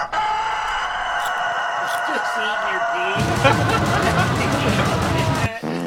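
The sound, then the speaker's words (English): A loud, drawn-out rooster crow rings out, and partway through a heavy, driving death metal theme song crashes in beneath it before cutting off abruptly near the end. “His theme song? That's about a rooster.”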